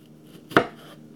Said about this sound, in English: Right now, I'm chopping down the tomatoes. It's in the morning right now. It's about 7 something. I'm in the kitchen.